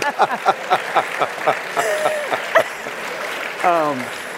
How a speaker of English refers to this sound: He started clapping.